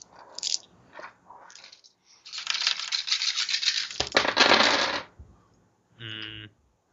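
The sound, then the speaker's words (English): Six dice are rolled across a table for a tabletop role-playing game check: a few scattered clicks, then a dense, rattling roll lasting several seconds before settling, with one die rolling off, followed by a short electronic beep. “One die rolled off.”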